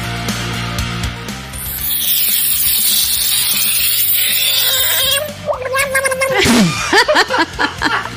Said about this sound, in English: Here it is, a screaming frog, everybody.